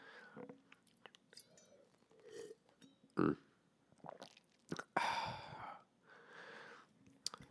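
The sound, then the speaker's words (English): Sipping and swallowing sounds from a drink of wine, with wet mouth clicks, a sharp slurp partway through, and a breathy exhale afterward, all quiet with no talking. “I think that calls for a sip of wine right here.”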